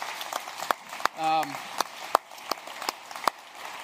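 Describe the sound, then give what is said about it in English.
Sparse, scattered hand claps as a few people in a church audience clap unevenly to thank the church's Kids Warehouse children's volunteers, with a brief vocal whoop or cheer rising early on. “So first off, actually, speaking of kids, there's people in our church who pay attention to kids every week, and I think they deserve our applause and our thanks at Kids Warehouse.”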